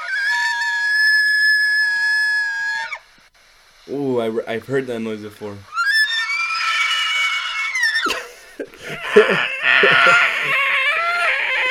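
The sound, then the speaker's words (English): A male elk's shrill, whistling rutting bugle, made by whistling and roaring through its vocal cords at the same time, rings out loudly for a few seconds. After a brief spoken remark, more high, wavering squeals and rough grunting calls follow. “A male elk produces shrill, rutting calls or bugles by whistling and roaring through their vocal cords at the same time.”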